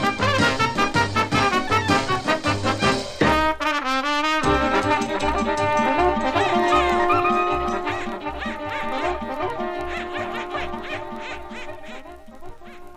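A parody version of a song plays as a recording: a bouncy, steady band arrangement with a brief warbling, quack-like wobble partway through, then the busy, loud music carries on.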